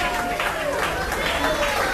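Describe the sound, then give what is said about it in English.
A crowd applauds steadily for a couple of seconds, a dense wash of clapping with faint whistles and voices mixed in, sounding full. “You know, one other thing about playing in this, sure you can applaud that. Why not?”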